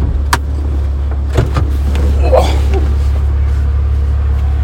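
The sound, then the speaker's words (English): A car engine idles with a steady low rumble while another person's car is being jump-started, broken by a few sharp clunks like a door or hood being handled, and a person briefly speaks. “I got to jump this guy's car.”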